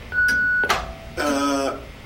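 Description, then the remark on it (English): An answering machine tone on the Mojo Radio Show's line (Rocket's answering machine): a steady high electronic beep, then a lower pure tone, then a buzzier, harmonic-rich beep, all within about two seconds with no talking. “But please, wait for the tone and the boys will be with you shortly.”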